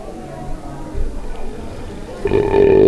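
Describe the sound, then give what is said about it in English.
A loud, drawn-out belch rumbles up near the end, voiced and throaty, following a quieter stretch of low murmuring noise. “rating them with these suds ratings, plus our signature belching sounds”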